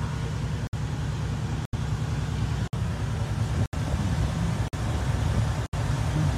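A steady, deep rumble of heavy truck engines idling in a convoy lineup, loud and continuous, with brief regular breaks in the sound about once a second. No one speaks.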